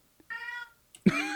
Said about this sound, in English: The cat is surprised. Yeah, this cat wants to go outside.